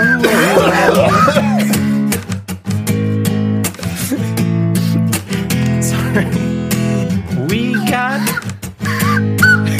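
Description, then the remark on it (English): A mouth whistle plays a loud, warbling melody with bending pitches over steady low sustained tones, broken by sharp percussive clicks, continuing without pause throughout. “Wait, were you really playing that mouth whistle?”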